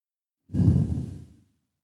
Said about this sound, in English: And then again, breathing in from the groin all the way up to the top of your head.